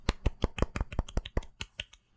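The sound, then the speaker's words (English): Soft, polite golf clapping: about a dozen light, crisp hand claps in a steady, unhurried rhythm, quiet throughout, with no talking over them. “Two golf claps, man.”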